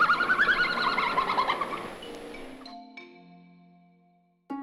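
A red panda gives a quick run of high, squeaky chirps for about two seconds, clear, before they trail off into faint lingering tones.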